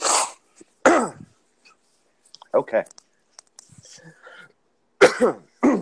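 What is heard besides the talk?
coughing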